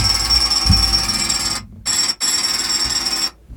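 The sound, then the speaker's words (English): A harsh, steady jackhammer sound effect rattles loudly for a few seconds, cutting out briefly twice before stopping, with a bright metallic ring running through it and no voices. “It's supposed to be a jackhammer, but...”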